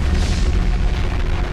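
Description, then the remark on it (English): A volcanic eruption's deep, rumbling boom: a loud, steady roar heavy in the low end, sustained without pause and with no voices. “First, the ground swelled up with tremendous howling, and suddenly a cry shattered it into pieces, and exposing the earth's gut like an animal tearing apart its prey.”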